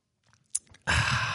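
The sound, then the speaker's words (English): Soft mouth noises and a quick slurping sip of a drink, then a sudden loud, steady rush of noise that fills the rest of the moment. “Wait a second, I'm just taking a sip here.”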